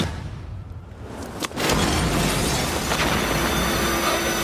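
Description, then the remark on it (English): After a brief low hum, a sudden explosion bursts in an office building, giving way to a loud, sustained roar and rumble with scattered crackling debris that lasts until the end. “With that warning from FBI agent Joe Matty, played by Enid Graham, who's been trying to lock him up, and considering the explosion that just rocked his offices, John demands answers.”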